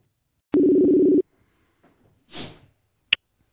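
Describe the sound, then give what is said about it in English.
A loud, steady telephone dial tone of an outgoing call sounds once for under a second, then cuts off, followed by a soft rustling swish and a sharp click. No one speaks. “We're about to make our first phone call”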